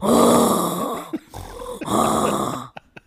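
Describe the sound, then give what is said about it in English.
A woman loudly imitates her own snoring from when she was pregnant, with two long, rough, rattling snorts separated by a brief pause, followed by a few quick clicks or smacks at the end. “I was pregnant and I snored like a beast.”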